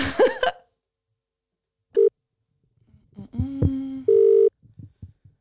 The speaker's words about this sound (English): So without further ado, I'm going to call him.